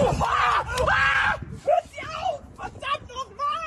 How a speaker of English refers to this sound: We have this video from Ollie London. German eco-activist screams in pain after emergency service workers try to unstick his hand after he glued himself to the road.